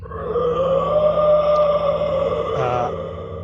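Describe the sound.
A voice mimics a creature's roar, a loud, sustained, growling tone that swells slightly in pitch, then breaks near the end into a brief wavering scream.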